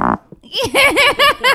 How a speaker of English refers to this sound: You could probably sell fake farts for cash.